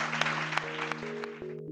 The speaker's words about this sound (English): But I think we all owe you a very great and extensive round of applause to say thank you very much.